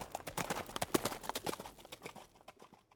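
Horse hooves clip-clop in a quick, steady rhythm of sharp knocks, growing fainter toward the end, with no voices. A horse named Solomon and its rider are racing against cross-country runners in the 1980 race in a small British town.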